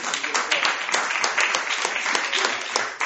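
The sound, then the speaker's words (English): A crowd gives God a round of applause, a dense, steady wash of many hands clapping together with no break for the whole stretch. “Come on, give God a round of applause.”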